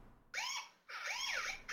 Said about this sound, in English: Uh-oh. You hear that alarm? You know what that means? One thing only. It is Overreaction Monday.